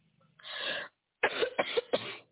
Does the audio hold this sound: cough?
yes